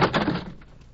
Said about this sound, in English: The skull. How did it get down here? It came down the steps.